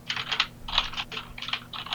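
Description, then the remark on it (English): Rapid clusters of keyboard clacks in uneven bursts, several quick keystrokes at a time with short pauses between, moderately loud over a faint low hum. Someone typing a post on Twitter. “Typing a novel.”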